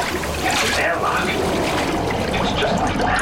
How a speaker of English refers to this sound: the floor came to a stop, and all of the water surrounding her swiftly left the chamber.